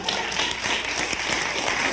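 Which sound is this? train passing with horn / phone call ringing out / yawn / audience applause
audience applause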